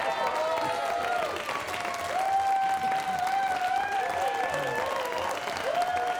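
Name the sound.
audience clapping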